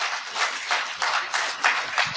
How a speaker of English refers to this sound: So if any of you are clients of the Department of Rehab, let me hear applause if you're a client in the Department of Rehab today.